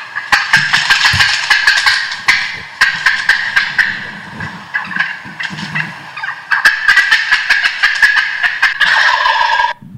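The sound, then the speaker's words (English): A wild turkey's fly-down cackle: a loud, continuous run of sharp, raspy clucks and calls, rapid and uneven in rhythm, filling the full ten seconds with no talking. “It's the fly down cackle.”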